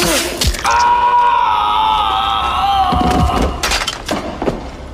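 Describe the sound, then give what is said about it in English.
In a film scene, a man falling during a fight as a roof opens lets out a long, loud scream, holding for about three seconds and sliding slowly downward in pitch, followed by a few dull thuds and impacts. “No, I think the third one was the last guy who fell. Like they're fighting with when the roof is opening. I think he's got a good scream.”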